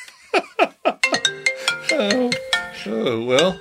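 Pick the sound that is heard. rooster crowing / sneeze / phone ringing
phone ringing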